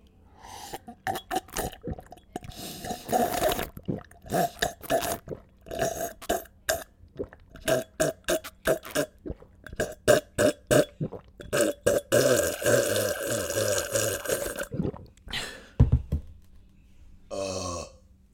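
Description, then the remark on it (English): Loud, wet slurping sips of a drink repeat in quick, uneven bursts, one after another for the whole stretch, with a few gurgly, throaty pulls near the end and no talking. “I'm going to sip, and you're going to listen.”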